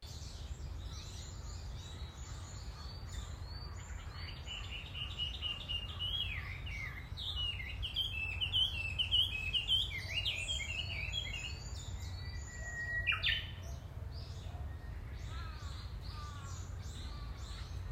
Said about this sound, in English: I seldom see many people during walking, but I can hear sounds of wind and the songs of birds. I feel really comfortable when I walk there. Do you want to hear recorded bird songs?